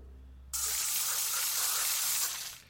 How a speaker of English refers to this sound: Well, I do shoot a mean sarsaparilla from the soda gun. Well, there you go. Yeah, let's do a practice. Don't hesitate. Just pull up your nozzle and spray.